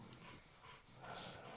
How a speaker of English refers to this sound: She's digging her bed. She's digging a bed. Yeah, she's making That's a bed. That's what dogs do.